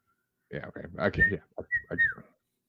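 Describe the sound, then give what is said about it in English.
Someone tries to whistle the theme tune of The Andy Griffith Show: a few short, wavering whistled notes mixed with breathy, voiced sounds, lasting under two seconds before stopping. “You know, that iconic whistle.”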